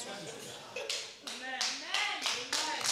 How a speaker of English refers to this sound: The only three people are clapping. Only three people are clapping. I didn't ask you to clap. So if you are going to clap, clap properly.